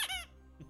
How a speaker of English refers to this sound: No, I chew the squeak toy.